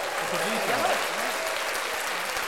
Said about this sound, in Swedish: Innan du går, det kommer komma en applåd nu. Du hör inte den, men nej. Jag hör den.